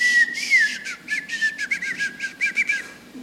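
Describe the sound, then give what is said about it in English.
A person whistles a rapid string of gliding, pitch-bending notes in short speech-like bursts, like a whistled language, reciting the Gettysburg Address. The whistling is clear and continuous, with no talking. “But there are over 50 known whistled languages. that are just whistles.”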